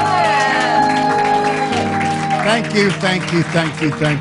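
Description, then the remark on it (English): A Liberty Family Church audience applauds and cheers for the pastor, with shouts and whoops rising over a steady, sustained musical tone. Voices call out throughout, the crowd noise staying loud and continuous for the whole stretch. “Come on, give him a praise. A great big praise.”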